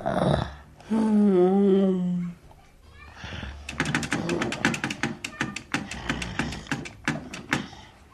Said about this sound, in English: To help him communicate, they tried him on an electric typewriter. A stick strapped to his forehead, they supported his head over the keys.